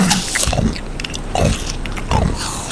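Slow, wet crunching bites into a crisp apple, with a few deliberate chews spaced apart and no talking.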